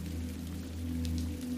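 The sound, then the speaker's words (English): Steady rain falls with a soft, continuous hiss and faint scattered patter, over a low constant hum. No one speaks. “Your heart is so full of hope and love that even the coldest rain cannot stop you from smiling.”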